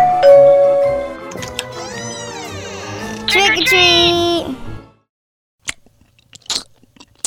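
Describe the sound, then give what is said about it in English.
Someone vocally imitates a doorbell chime as trick-or-treaters ring a doorbell on Halloween, a series of sliding, sung tones for several seconds, fairly loud, then it goes quiet apart from a few faint clicks. “Ring the bell.”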